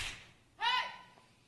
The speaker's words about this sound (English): What I'm going to do now is I'm going to clap my hand. And when I clap my hand, it's going to be like a line of demarcation in the spirit realm.